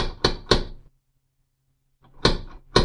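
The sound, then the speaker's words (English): A door being opened: two sharp wooden clunks, a second of quiet, then two more solid knocks of the latch and frame, with no voices. “I was about to push in the door when Finkel opened it.”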